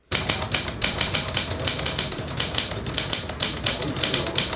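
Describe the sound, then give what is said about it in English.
Rapid mechanical clacking of an old Underwood 5 manual typewriter with original carriage return, keys striking in quick uneven bursts throughout, fairly loud with no voices. “I found this typewriter next to the courtyard dumpster, an old Underwood 5 with original carriage return.”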